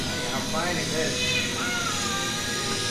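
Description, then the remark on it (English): A hungry cat meows loudly and insistently, its cries long and wavering, one stretching drawn-out to the end, over a busy background with people's voices murmuring beneath. “You weren't kidding about how fucking loud this cat is.”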